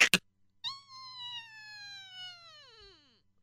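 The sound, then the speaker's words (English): Two quick latch clicks, then a long, high, squeaky creak that slowly drags downward in pitch as a son's door is swung open at the top of the steps, with no voices. “Let me open my son's door.”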